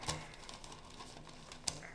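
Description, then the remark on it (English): Pages of a musicians' trade newspaper rustling and crinkling as they are handled and turned, with a sharp crackle at the start and another near the end, with no talking. “Did you check the musician trade papers? Not today's yet. We just bought it. Ah, well, hand it to me.”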